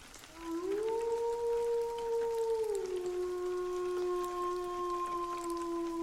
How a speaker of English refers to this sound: I would normally talk myself into it, just being an animal, but the weird vibe I got, I can't even describe it. The howl or scream sounded like it was right in my ear.